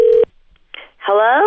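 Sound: telephone dialing tones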